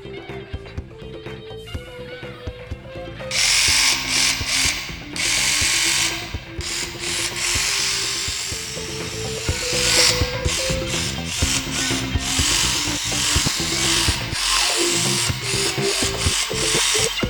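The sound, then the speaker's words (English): A Ridgid reciprocating saw cuts through wood, starting with a softer motor hum before breaking into a loud, harsh rasping buzz whose pitch wavers up and down as the blade speed changes. “Volts of reciprocating rigid tool saw.”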